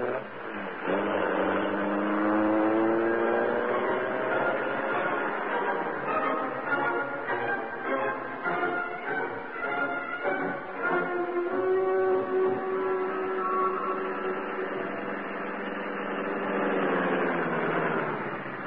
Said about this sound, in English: The door slammed, the motor roared. As the great car leaped forward, a section of the wall slid up on oiled hinges, and the Black Beauty rushed into the darkness and the night.